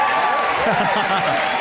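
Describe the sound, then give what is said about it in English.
A stand-up comedy audience, on Comedy Central, applauds for sleep with dense, crackling clapping that holds at a steady, fairly loud level throughout, with a few voices mixed into the crowd noise. “Round of applause for sleep if you love it.”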